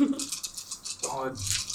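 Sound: dice rattling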